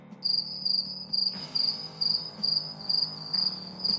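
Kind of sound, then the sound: insect, crickets chirping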